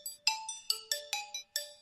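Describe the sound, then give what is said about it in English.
A quiz buzzer sounds as a quick electronic chime melody, about seven bright, bell-like notes of varying pitch played in an uneven rhythm, clear and alone with no talking. “Buzz was still. Buzz.”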